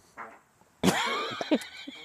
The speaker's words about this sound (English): … literally just lifted himself out of his chair with a fart.